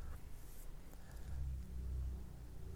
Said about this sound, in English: Can you hear that car in the background? It's a van. Every day, 6 o'clock in the morning, sometimes earlier. It's too early to be making noise like that. Hear that?